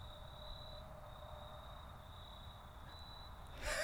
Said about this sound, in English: Sometimes you gotta stop and enjoy the crickets, you guys. The crickets, bros. Just listen to them.